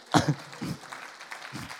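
A short burst of audience applause, a dense crackle of clapping hands, with a few voices briefly rising over it.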